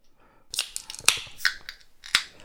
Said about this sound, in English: I'm going to slide my beer glass left and fill it with some farm to foam.